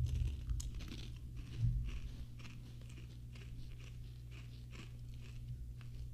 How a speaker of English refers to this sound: All right, not as bad as I thought. I don't know what I'm eating. Is it like a tortilla chip in the shape of a Funyun? I don't taste the Funyun. I just taste the spicy queso on this airy ring.